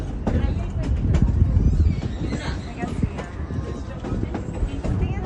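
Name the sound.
train riding on rails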